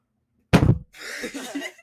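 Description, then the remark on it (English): A single loud, heavy thump as a hand slams down on a desk, sharp, followed by a stretch of softer scuffling, rustling noise. “Dude, no, they could hear me slam the desk.”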